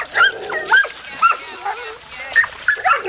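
Several dogs yip, bark and whimper in quick, overlapping bursts, with high-pitched whines rising and falling over a busy background of faint voices, at a doggy dip event at the Wilson Aquatic Center pool in Shenandoah in late August, at the end of swimming season.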